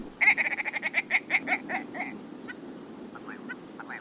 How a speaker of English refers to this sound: Willow ptarmigan. Uh-huh. To me, this has one of the most comical calls of all the birds of North America. It sounds like somebody trying to make little sounds with their throat or the back of their throat.